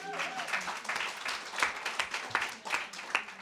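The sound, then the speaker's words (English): An audience applauds steadily for a few seconds, a dense crackle of many hands clapping at once with a few sharper claps standing out, fairly loud and with no talking over it. “A round of applause.”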